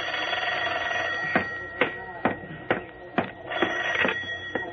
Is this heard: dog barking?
no